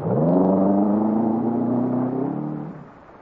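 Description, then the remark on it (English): A car engine revs up loudly with a rising harmonic whine as the car is driven away from pursuers in a chase. It holds a strong, steady roar before the sound fades slightly as the car speeds away. “I drive fast enough to keep out of range, but not fast enough to lose them.”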